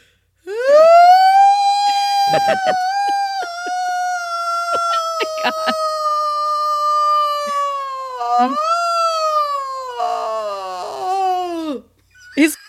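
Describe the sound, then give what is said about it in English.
A person imitates an exaggerated, drawn-out yawn: a loud, strained vocal tone that rises, holds steady for several seconds with slight wavering, then sags and trails off, ending with a short breathy sound. “dramatic yawn, but he would do it on purpose”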